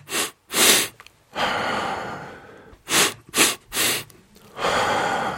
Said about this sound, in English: when I excited my nervous system, it was three quick inhalations and a short exhalation. Three quick inhalations, one on top of the other, and then after the third one, it's a short exhalation.